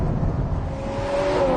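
A Ferrari 812 GTS V12 engine revs steadily, its pitch climbing toward the end, with a loud, dense rumble filling the whole clip and no voices.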